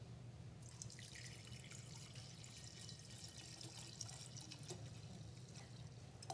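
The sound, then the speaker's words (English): Water pours steadily into a container for several seconds, a continuous splashing trickle with small drip-like spatters, fairly quiet and heard alone over a low background hum. “And so imagine that this is God pouring into us.”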